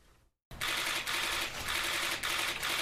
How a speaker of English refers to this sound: Hear those cameras clicking? More press than voters in that little room.